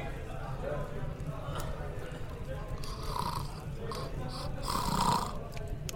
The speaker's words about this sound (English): The sound of snores came in the wake of Mickey's unfinished yarn